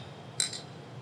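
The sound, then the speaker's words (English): Two quick, bright clinks of beer glasses holding Stony Creek East Coast IPA touching in a toast, close together and fairly soft, with a brief ringing tone, against quiet and no talking. “Cheers, boys.”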